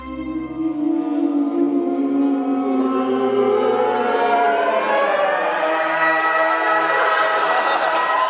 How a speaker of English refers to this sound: Now, Deep Note is probably not as famous as a Beethoven symphony, but it's become a staple in its own right. A quick YouTube search returns all kinds of parodies.